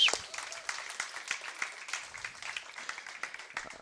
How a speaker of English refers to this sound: Let's give a worship team a round of applause.